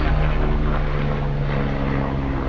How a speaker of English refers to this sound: That's a police helicopter.